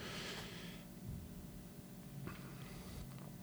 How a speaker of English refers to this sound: Sorry, I'm breathing into the mic.